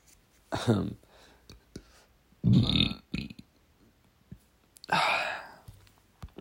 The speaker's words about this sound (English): I just burped again.